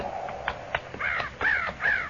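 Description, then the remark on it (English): Several crows caw in a loose back-and-forth, harsh nasal calls repeating about three times with short gaps, clear, with no one talking. “Those crows ain't flying. Figure they're sitting in the trees waiting for a handout.”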